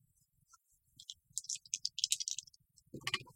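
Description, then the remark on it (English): Two six-sided dice clatter and tumble across a hard surface in a quick burst of sharp clicks, then settle with a final brief rattle. Moderately loud, with no voices. “You want to roll 2d6?”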